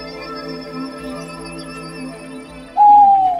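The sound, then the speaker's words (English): A single loud owl hoot rings out near the end, sliding slightly downward, over a steady, humming musical drone with no talking, accompanying the casting of the spell Enhanced Ability, Owl's Wisdom. “and I put my hand on Vim's shoulder, and I cast Enhanced Ability, Owl's Wisdom.”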